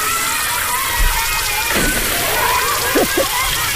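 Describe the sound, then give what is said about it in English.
Water sloshes and splashes continuously, with a few louder splashy surges standing out from the steady wet churning. “There's wasting water on an odd numbered day.”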